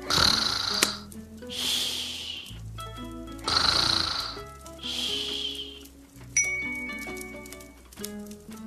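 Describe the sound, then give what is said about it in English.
A bear snores loudly and steadily, with about four deep, rasping breaths in a slow rhythm, over soft, twinkling background music. “Hare burps, big burps, but the bear snores on.”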